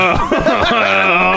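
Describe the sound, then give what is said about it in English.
A voice imitates groaning and moaning, starting with a few short wavering grunts and then drawing out into a long, steady, low moan, with no words spoken. “you're groaning and moaning.”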